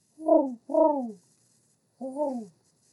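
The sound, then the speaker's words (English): Three low, breathy owl hoots sound with nobody talking: two in quick succession, a short pause, then a final falling hoot. “Those were some owl noises as the owl flew at you.”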